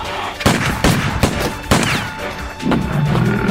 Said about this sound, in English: Did you see where it went? No. By the time I stopped firing, it was gone.